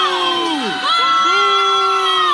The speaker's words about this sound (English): Here are students booing as he walks across the stage